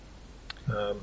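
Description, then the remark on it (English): A person briefly imitates a dolphin's clicking: one sharp click, then a short, buzzy, squeaky voiced chirp, fairly quiet, lasting about a second. “It's not a very good impression of a dolphin, but it's doing the clicking thing.”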